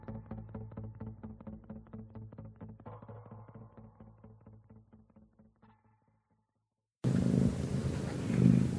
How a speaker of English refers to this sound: I hear a cat.